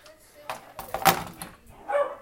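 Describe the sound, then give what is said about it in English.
A male dog, just back home and excited, barks with a sharp, loud bark near the middle and a softer yelp toward the end, amid some background movement and noise. “And he's barking.”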